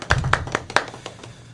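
Brief applause for a decline in COVID cases in the school district: a handful of sharp, evenly spaced hand claps, the first few loud and crisp, then quieter, scattered claps trailing off. No voices.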